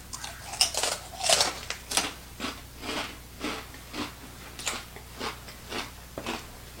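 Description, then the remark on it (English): Loud crunching of Takis Explosion cheese and chili pepper rolled tortilla chips being chewed, a string of sharp crackling bites repeating in a steady rhythm over several seconds, with no talking. “It gives this crazy, amazing crunch.”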